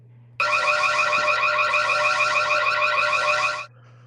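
A loud electronic crime alarm sound effect blares steadily for about three seconds, its warbling tone pulsing rapidly over a low background hum, then cuts off abruptly.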